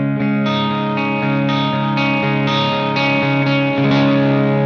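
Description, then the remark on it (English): An electric guitar played through a reverb pedal plays sustained, effected chords with a soft reverb wash, re-struck roughly every half second in a steady rhythm, loud with no voices. “Not even too much, but you know, just to kind of give it a little bit of a room sound. Just give it a little air.”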